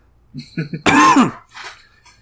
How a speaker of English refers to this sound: She cough laughs a bit.